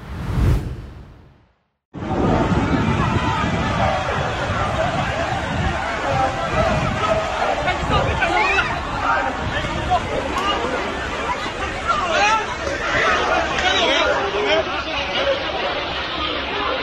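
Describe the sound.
A large crowd roars with dense, overlapping voices and shouting, a loud, steady hubbub that runs unbroken for about fifteen seconds after a brief opening sound and a moment of silence.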